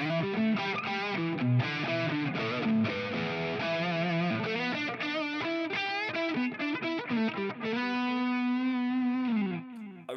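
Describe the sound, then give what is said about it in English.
An overdriven electric guitar, an HSS Strat in humbucker mode played through a green distortion pedal resembling a Tube Screamer, plays a busy run of gritty, saturated notes and chords, fairly loud with no talking, then rings out on one long sustained note before cutting off. “I've set up a couple of distortion boxes. One's called a green box. Looks like a tube screamer.”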